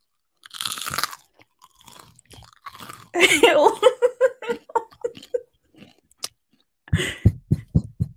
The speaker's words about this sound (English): Huge fucking crunch. I'm fucking hungry. Nobody likes it. It used to be rude to chew with your mouth open, but that's why I like ASMR.